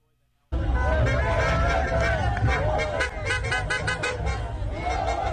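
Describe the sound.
A loud crowd of people in the backs of pickup trucks in Canada shouting and cheering outdoors for the attack that had just taken place in Israel, over a rumble of vehicle noise, with overlapping chatter and occasional horn-like toots, continuous.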